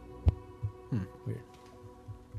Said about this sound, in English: Your mic's humming again.